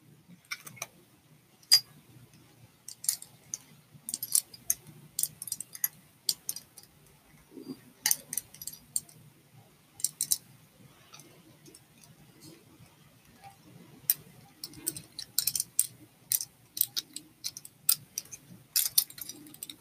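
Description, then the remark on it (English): Keys jingle and clink in irregular bursts of sharp metallic clicks, over a low steady rumble like a car interior. “So here I will use my keys.”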